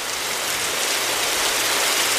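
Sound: rain sound effect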